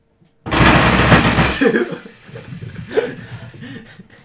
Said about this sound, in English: That's pretty loud keyboard.